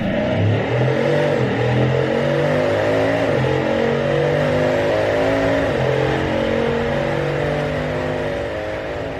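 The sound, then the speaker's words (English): A Bugatti Chiron's engine roars loudly and continuously on its first lap of the day around a track, its pitch climbing and dropping through repeated gear changes as it accelerates hard, with no voices. “You choose the Chiron for the first lap of the day. Now, turn up the volume on your headphones.”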